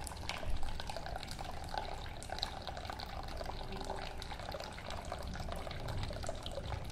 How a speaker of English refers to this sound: Going to get the water into this packet. And the process is almost finished. The emptying of the water is almost done.